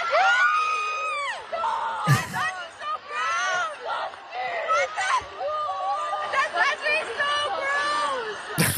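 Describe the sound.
A crowd of many voices cheers and whoops together in a continuous, excited clamor, with high wavering shouts rising and falling and a couple of sharp bursts cutting through.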